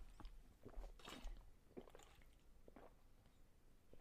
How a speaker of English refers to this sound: I need a sip of water, guys. My throat is literally on fire.